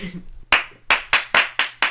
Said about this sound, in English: And they all clapped.